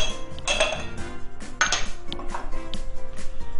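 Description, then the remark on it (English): Heavy metal clanks and scrapes as a new cast iron skillet is handled while a tablespoon of butter is melted in it for a dessert, with two sharp bright knocks standing out among softer rattling and shuffling, and no one talking. “1 tablespoon of butter, and you melt it in my new cast iron skillet.”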